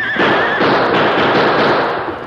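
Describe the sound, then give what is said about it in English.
The Lone Ranger's great horse Silver whinnies briefly near the start as he is reined into a spinning turn, while a loud, dense burst of rapid gunfire crackles continuously underneath, filling the whole moment with sharp overlapping shots and no talking. “Then the roar of gunfire attracted the onlookers as the masked man reined the great horse Silver into a spinning turn.”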